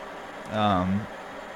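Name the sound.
water pipe bubbling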